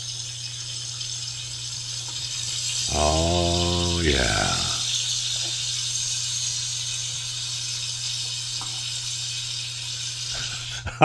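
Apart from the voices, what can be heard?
bacon sizzling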